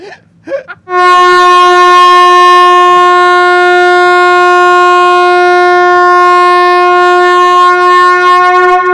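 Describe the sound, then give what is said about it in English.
After a brief snippet of voice, a loud air horn blares in one long, steady, unbroken blast lasting about eight seconds, its brassy tone holding constant until the end. “There's not enough air horns.”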